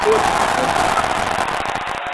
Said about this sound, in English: Finally, I get some applause here on the Wrestle Talk podcast.